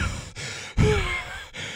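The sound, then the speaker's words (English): Heavy breathing comes through a phone line in a few breathy bursts separated by brief dropouts. Each breath sounds rough and noisy, with no talking. “Dude, why are you breathing so heavy?”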